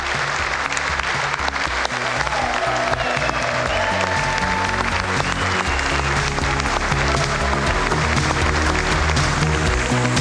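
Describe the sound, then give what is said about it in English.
Sustained audience applause at one of Donald Trump's State of the Union addresses, for Rush Limbaugh as he receives the Presidential Medal of Freedom. A loud, dense wash of clapping continues steadily for about ten seconds with occasional faint voices and cheers mixed in. “A well-deserved round of applause for Mr.”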